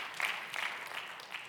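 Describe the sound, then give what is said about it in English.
An audience claps to the Lord together, a steady wash of many hands applauding at a fairly even, moderate level for the whole moment, with no voices standing out. “And so again, yeah, you can clap to the Lord.”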